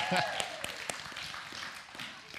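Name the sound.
audience applause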